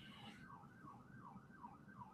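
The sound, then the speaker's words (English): A police siren wails in quick, regular rising-and-falling cycles, sounding somewhat muffled over a steady low rumble of background noise. “I hear police sirens. That's on my end.”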